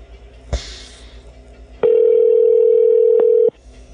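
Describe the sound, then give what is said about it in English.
A single steady telephone ring tone drones for nearly two seconds after a faint click, a call to a friend ringing through on the other end with nobody picking up. No one speaks. “This podcast is just going to be me leaving messages on people's phones.”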